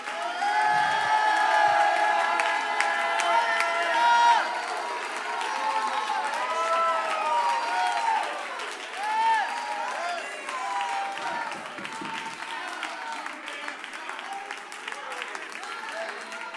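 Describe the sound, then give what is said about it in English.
A church audience at a worship service roars with sustained cheering, whoops and applause in praise for about sixteen seconds, a dense, loud wash of clapping and shouting voices that stays steady throughout. “Come on, let there be a roar.”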